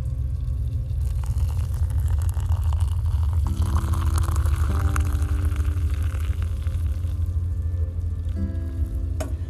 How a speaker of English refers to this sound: I love pouring that very first cup of hot coffee, hot water, into my little coffee mug, XOXO, that matches my necklace.